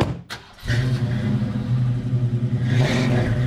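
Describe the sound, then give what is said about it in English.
A NASCAR race car engine starts with a loud brief burst, then holds a steady, throbbing rumble and revs up again near the end, a powerful race-car growl with no talking. “I never thought I'd get a chance to drive a NASCAR car.”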